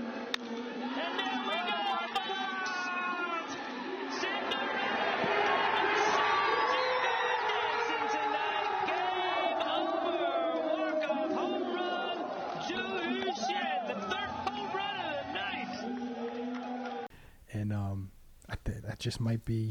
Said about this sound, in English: But what they're doing is they're injecting crowd noise into it. So the guy hit a walk off home run, and the crowd is going crazy. But there's just cardboard fans, literally cardboard cutouts of fans in the stands.